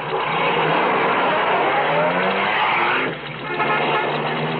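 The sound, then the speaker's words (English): A car pulls off the highway, its engine and tires making a loud, steady roar with a hint of skidding; the noise briefly dips before surging again. No one speaks. “Hey, there's a car coming. It's pulling off the highway.”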